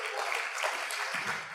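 A crowd claps steadily, many hands producing a dense, even patter of applause at a moderate level throughout, with no voices heard.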